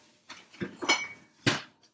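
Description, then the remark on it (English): A bottle of Hackner Shore Original Oktoberfest Amber Marzen beer being cracked open: a few light glassy clinks and metallic scrapes from the opener, then one sharp, bright pop of the cap coming off, with no one talking. “Here, we'll get this cracked, and I'll kind of continue my story.”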